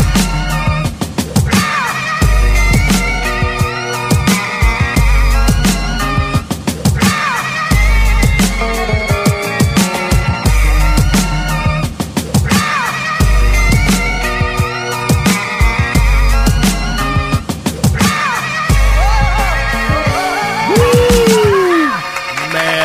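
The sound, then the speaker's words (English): A loud hip-hop beat plays throughout, with steady punchy drum hits over deep bass and layered melodic samples looping in a repeating pattern, no voices over it. “That beat, sick with it, man.”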